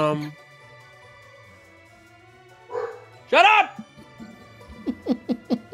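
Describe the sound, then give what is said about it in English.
Several dogs bark in another room, a loud harmonic bark around the middle followed by a quick run of four or five sharp, higher yips near the end, with a person speaking briefly at the start. “Because I finally got it, so I can finally listen to the dogs barking in the other room.”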